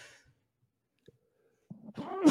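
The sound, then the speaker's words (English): A loud sneeze: a breathy, voiced wind-up of rising gasps that ends in a sharp, forceful burst, preceded by a faint breath and a tiny click in near silence. “Oh, we got tonight. We got big sneezes.”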